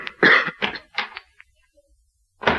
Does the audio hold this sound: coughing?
yes